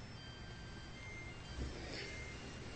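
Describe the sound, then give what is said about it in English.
A faint electronic car beeping or chime, heard as thin steady high tones over a low background rumble, quiet, with no one speaking. “That's a really great ringtone. It's the car. It's the car.”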